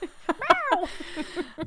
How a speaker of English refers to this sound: My assistant is not very good. He's a cat, but if you didn't catch that from the meows